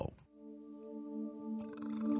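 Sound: burp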